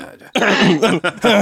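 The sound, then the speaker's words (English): A person gives several quick, forced coughs in a row, loud and raspy, like a mock cough imitated with the voice rather than a real fit. “She's like, certified, cough, cough.”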